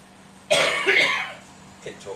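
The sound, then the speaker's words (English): A single loud cough bursts out suddenly, rough and throaty, as the person tries to turn a microphone off, then trails off into a few faint vocal noises. “No, I was trying to cough and turn the mic off at the same time.”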